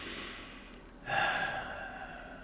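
Slow, quiet breathing of resting creatures lying with their chins down, chests rising and falling: a soft, airy breath fades out, then a fuller, slightly raspy intake swells and lingers. No voices are heard.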